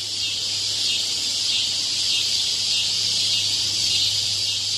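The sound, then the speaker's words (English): A dense, unbroken drone of cicadas buzzing in a high, hissing chorus, steady and fairly loud for the whole stretch with no pauses and no voices, over a faint low hum. “Like just because of the way they look, or just the is the sound annoying to you?”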